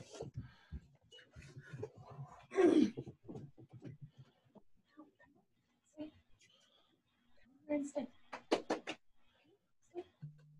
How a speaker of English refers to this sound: Actually, because I'm going to go close my door real quick. Hold on 1 second.